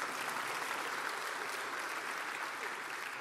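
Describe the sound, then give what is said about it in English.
An audience bursts into steady applause, a dense wash of many hands clapping at once, holding an even level for a few seconds with no voices on top. “You can clap right there. That's a great place to clap.”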